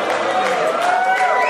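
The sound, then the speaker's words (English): A crowd breaks into steady applause mixed with cheers and excited voices after the word kangaroo is said, a dense, continuous wash of clapping and chatter that holds at an even loudness throughout. “Yeah, people clap because you say kangaroo.”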